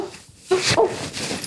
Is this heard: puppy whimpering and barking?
yes